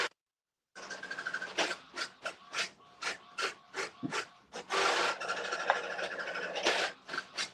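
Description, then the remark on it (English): A printer randomly runs through a page, with a quick series of rasping mechanical passes followed by a longer, steadier whirring stretch, fairly loud with no one talking. “printer is randomly printing something. That's going to be real loud for a second.”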